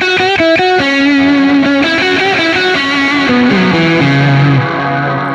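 A loud, distorted electric guitar plays a slow descending melody, its notes sustaining and blurring together in a wash of reverb from an MXR reverb pedal on an expression pedal, with no talking over it.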